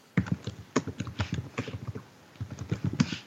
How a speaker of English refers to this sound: you're really typing away, huh? Yeah, what is that?